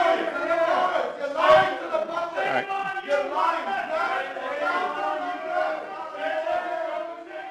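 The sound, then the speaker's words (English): Several voices shout loudly and continuously over one another, raised and strained, with no pause for the full stretch: hecklers interrupting a press conference as law enforcement escorts them outside, the shouting lasting less than a minute. “The shouting went on for less than a minute as the hecklers were escorted outside by law enforcement.”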